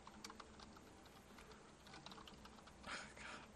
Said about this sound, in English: This keyboard sucks and always has.